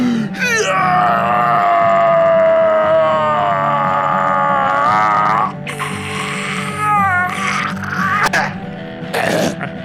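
A man whose head is glued fast to a wall lets out a tremendous battle cry as he shoves against the wall, a loud, strained yell held for about five seconds, followed by several shorter, ragged grunting shouts.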